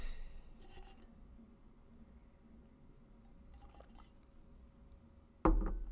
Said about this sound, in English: I'm going to take one more drink, sip of water.